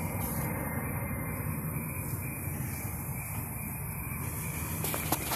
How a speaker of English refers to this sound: Yep, those planes are going crazy tonight. Wow.